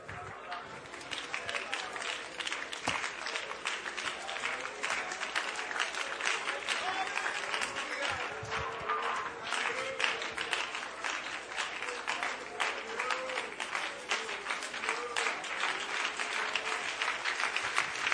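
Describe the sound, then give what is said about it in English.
An audience at a church service applauds steadily, thanking God for apostolic ministry: a dense, continuous wash of many hands clapping at once, holding a fairly even loudness throughout with faint voices mixed in underneath. “Clap your hands and thank God for anointed, appointed, apostolic ministry.”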